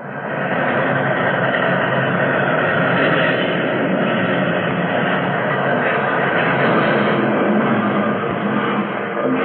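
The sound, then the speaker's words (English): A derailing train, its rear cars flung off the tracks along an embankment, gives off a loud, unbroken grinding roar of heavy rail noise that holds steady for the whole stretch, with no voices and no separate impacts standing out. “I saw the rear cars as if they were toys, suddenly flung, hurtling off the tracks.”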